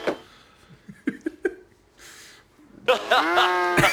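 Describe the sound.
A loud, drawn-out cow moo, played as a sound sample, rises near the end and is sustained for about a second, following a few short voice fragments and clicks.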